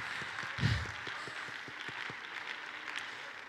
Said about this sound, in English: We need to clap our hands and thank the Lord together.